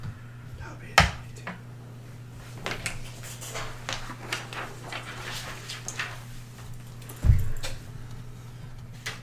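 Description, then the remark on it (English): A player rolls a handful of dice for damage, rattling and clattering across a table, a scatter of quick light clicks between two sharper knocks, over a steady low hum. “She's rolling her damage.”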